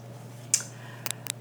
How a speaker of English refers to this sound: It's just the wire. It's just the wire, like, clicking. It's just Sorry. The plastic clicking. I'll put it down.